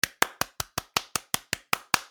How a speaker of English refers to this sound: Sorry, I just felt the need to clap for that.